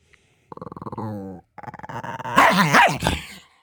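A dog growls and whines in a pulsing rumble, then breaks into loud, snarling barks that swell and fade over a few seconds, with no talking.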